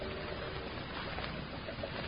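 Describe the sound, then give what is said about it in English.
A steady, continuous rumble of steamboats churning past on a river, with a wash of water noise and no break in the sound. No one speaks. “We got to the edge of the river. We sat down to watch the boats steam by.”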